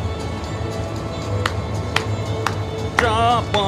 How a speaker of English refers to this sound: And you can hear the people in the crowd that have noticed it. They're all cheering.